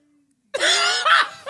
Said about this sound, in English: Coughing up a lung.